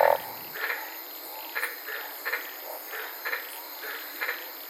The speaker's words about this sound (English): I was sitting in my car this night in Queensland, Australia. My microphone was placed over 200 feet away, and I was monitoring these green-lipped frogs. I can honestly say I fell asleep listening to them for over an hour.